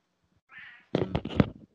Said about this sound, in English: That cat is sorry.